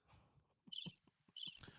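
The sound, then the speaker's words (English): A cricket chirps in two short bursts of high, trilling pulses, faint, with soft low rustling or tapping sounds underneath and no talking. “Oh, yeah, cute cricket.”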